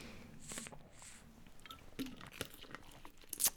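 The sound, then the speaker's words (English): Sipping of an iced tea: two short airy slurps followed by a scatter of crisp clicks and crunches, like ice shifting in a cup, with no talking. “I'm just going to take a sip here. My iced tea.”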